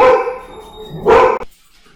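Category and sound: animal, dogs barking excitedly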